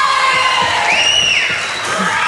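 A large crowd screams and cheers continuously, loud and dense, with a shrill rising-and-falling shriek cutting above the roar midway through.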